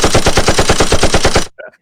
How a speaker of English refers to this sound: Cobra Law! Where's those gunshots? Where's those gunshots?